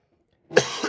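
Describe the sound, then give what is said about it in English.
A single sharp cough bursts out after a moment of silence, fairly loud, with a rough, breathy tail and a slight second push at the end. “It's a cough war.”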